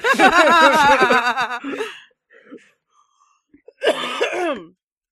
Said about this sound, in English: getting over a cold, so we'll just be coughing into the mic.